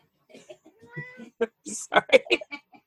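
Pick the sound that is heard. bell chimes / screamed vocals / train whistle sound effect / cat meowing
cat meowing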